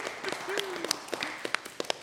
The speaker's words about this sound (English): Big round of applause for the random assignation of trinkets!